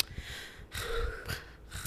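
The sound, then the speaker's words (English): A person imitates their own heavy breathing into the microphone: a few loud, rough breaths in and out with a harsh airy rasp, alone without any talking. “God, I could hear myself breathing like last week on the fucking thing. I was like this.”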